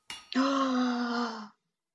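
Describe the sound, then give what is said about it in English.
A sharp, breathy intake of air breaks into a long, loud voiced "ahh" lasting about a second, a single excited gasp by one woman at hearing the word teleportation, then silence. “eyebrows are going to shoot up and her eyes are going to go wide and her mouth is going to go wide and she's going to let out a huge gasp and she's just so excited by even hearing the word.”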